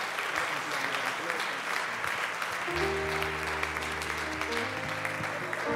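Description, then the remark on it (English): An audience at a church service in Cincinnati claps steadily in sustained applause of appreciation for a guest preacher, while a low sustained organ-like tone swells in partway through beneath the clapping. “Could you receive him with a great big hand clap of appreciation?”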